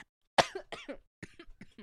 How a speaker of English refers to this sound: Oh, sorry. Sorry, guys. I had a cough, a really bad cough.